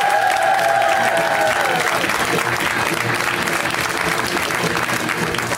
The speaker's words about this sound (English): Hey, you know what? Great news. I'm so glad you're already clapping because we got a great comic up first.